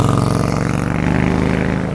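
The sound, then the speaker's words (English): A motorcycle with red tail lights and green lights illuminating the pavement below rumbles loudly, a steady throbbing drone that holds for a couple of seconds with no voices, in the dark early morning before sunrise. “It looked like a Christmas motorcycle.”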